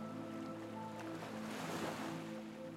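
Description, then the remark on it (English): Ocean waves wash onto a sandy shore in a steady hiss that swells to a gentle crash partway through, with a soft sustained musical drone underneath. No one speaks. “And as you gently start walking towards the shoreline, you can hear the waves gently getting louder.”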